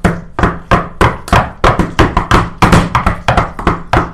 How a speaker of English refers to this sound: You have. Great, I'll do it again. Oh, cool. Yeah, I just keep knocking. Like, just... No discernible rhythm.